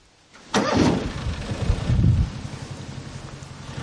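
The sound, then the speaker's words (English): A John Deere Gator utility vehicle engine cranks and catches with a sudden burst, revs briefly, then settles into a steady, throbbing idle, with no voices. “I'd take a ride in a John Deere. A gator.”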